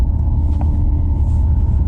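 A steady, loud low-frequency rumble of an electric truck's enhanced driving sound in off-road mode, droning continuously without pauses and with no voices over it.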